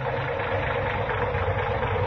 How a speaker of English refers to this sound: Say, that engine of yours sounds like real tired iron.